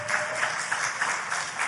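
An audience applauds, a steady wash of many hands clapping at once with a dense, crackling texture that holds at an even level through the short moment, with no voices over it.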